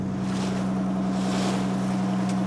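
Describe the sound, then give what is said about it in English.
A boat engine drones steadily, a constant low hum with a strong tonal band, backed by a broad wash of wind and water noise, as the boat motors across the middle of a lake, halfway between Tipperary and County Clare. No one speaks. “We're in the middle of the lake now, halfway between Tipperary and County Clare.”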